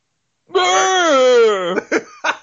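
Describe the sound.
A voice imitates the Final Fantasy Tactics Fatal Scream: one long, strained, wavering yell held for over a second, followed by two short, harsh gasping bursts.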